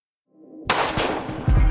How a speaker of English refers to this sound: Gunshots rang out from the back of the reggae club. They overpowered the sound of ska music coming from the stage. They snapped like pop balloons, loud as fuck. The crowd panicked and the band stopped playing. More shots rang out.